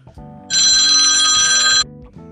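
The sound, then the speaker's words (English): A cell phone that is being used to do a morning program rings loudly with one bright, sustained electronic trill lasting just over a second, standing out above a steady low hum of background tones. “Sorry about the ring, folks. This morning's program is being done on the cell phone.”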